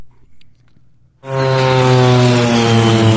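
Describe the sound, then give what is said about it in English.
After about a second of near silence, a loud propeller crop duster airplane engine suddenly roars in at the start of a song, a steady droning buzz with strong harmonic hum that holds through to the end. “and it starts with a groovy airplane noise.”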